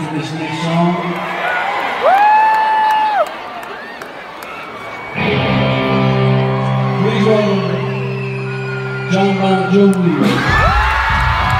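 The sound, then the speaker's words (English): A loud concert crowd near the snake pit cheers and whoops, with high rising yells and shouts piling over a steady roar of many voices, swelling louder midway and again near the end. “Whoever it was right close to the snake pit, where everybody's cheering and yelling.”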